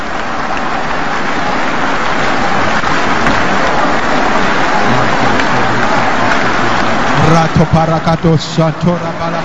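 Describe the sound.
A crowd claps hands steadily in a dense, continuous patter while many voices murmur prayers underneath; near the end a louder voice breaks through in rhythmic bursts.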